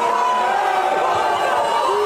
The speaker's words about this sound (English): Now he's getting booed, and it's nothing but children all around.